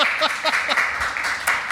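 A live studio audience at May's Studio Bar applauds, a dense, steady wash of many hands clapping at moderate loudness, with faint voices mixed in beneath it throughout the brief burst.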